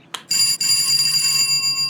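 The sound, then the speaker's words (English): A door buzzer at Bobby Cratchit's home in Washington Heights, rung by a visitor standing outside in the snow, sounds one continuous harsh, high-pitched electronic tone lasting over a second and a half, loud and steady after a brief click at the start, with no voices. “Okay, I'll ring the buzzer.”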